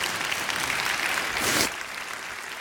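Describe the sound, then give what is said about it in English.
A church audience claps together as praise to God in a dense, steady wash of applause, swelling briefly louder around the middle before settling back to an even patter. “If you're not clapping for me, I hope you don't.”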